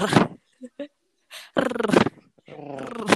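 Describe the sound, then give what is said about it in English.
Voices imitate the chatter of the cartoon platypus Perry the Platypus with rolled-R trills: a few short clicks, then two loud, growly, rattling bursts, each about half a second long. “Were we trying to figure out how to make the Perry noise?”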